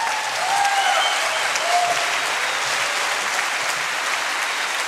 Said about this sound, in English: Luke, bask in it, my friend. No one will ever clap for you again. No one claps for investigative journalists.